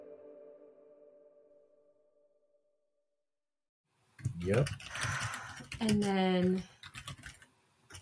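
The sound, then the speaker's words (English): A fading low hum gives way to silence, then rapid clicking of computer keyboard typing, with some brief vocal sounds mixed in over the keystrokes. “I'm just laughing at my own typing.”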